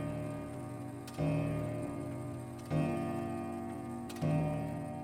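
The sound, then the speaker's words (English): A clock ticks slowly and heavily, one loud, resonant tick about every second and a half, each ringing out over a steady tonal hum, with no one speaking. “And then Bump looks towards the clock as it...”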